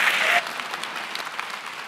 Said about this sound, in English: Please give them a very warm round of applause.